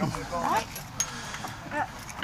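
A couple of short dog barks ring out over a busy outdoor murmur at a sunny seating area with chairs and large umbrellas where quite a few dogs are present, one bark early and another a second or so later, neither very loud.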